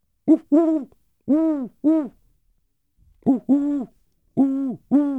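An owl hoots in two close, loud bursts of about four rounded, wavering notes each, separated by a brief pause, with no other sounds or voices around them.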